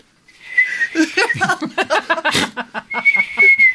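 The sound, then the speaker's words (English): A thin, steady high-pitched whistle like a boiling kettle sounds at the start and again near the end, with bursts of laughter and chuckling in between. “Your mother's sat at home thinking the kettle's boiling.”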